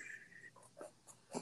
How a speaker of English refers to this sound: Don't be breathing hard on me, okay?